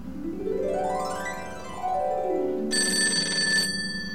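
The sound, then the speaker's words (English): A phone rings with an electronic tone that slides upward and then back down, followed by a bright, high, buzzing ring burst lasting about a second. No one speaks. “Saved by the bell.”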